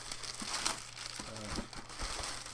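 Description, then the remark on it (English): Crinkly wrapping paper wrapped around a shoe rustles and crackles continuously as it is pulled off and handled, with sharper crumpling bursts scattered throughout and no voices. “There's tons and tons and tons of paper wrapped around it.”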